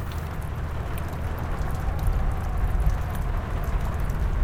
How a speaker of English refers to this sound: Oh, this damn rain. The bucket begins to catch the rain.